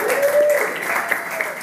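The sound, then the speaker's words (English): A crowd applauds steadily for the people who took part in the Spin for Hope event, a dense, even wash of many hands clapping that holds at a fairly loud level throughout, with a faint high tone or cheer briefly rising above it early on. “Can I get a round of applause for those people that were at Spin for Hope yesterday?”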